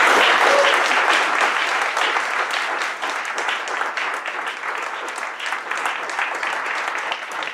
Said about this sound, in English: I'm so thrilled to be able to introduce him today, author of Mastering Bitcoin and his new book, The Internet of Money. Everyone, please, round of applause and Andreas Antonopoulos.